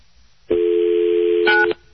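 A telephone keypad tone sounds clearly and steadily for over a second, with a second brief tone layered in just before it cuts off; no one speaks.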